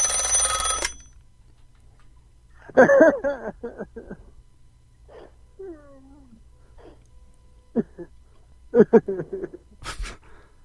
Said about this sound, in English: That your phone? Did you put a phone booth in here? From 1920 England? That's my grandma's phone. It's a rotary. That's a rotary.